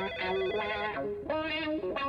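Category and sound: signal or alarm, telephone ringing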